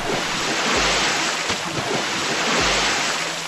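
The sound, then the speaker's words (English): Loud rush of churning cold water as people in diver suits jump into a river, with a continuous roaring wash and a couple of dull low thumps. No voices. “All right, let's jump in.”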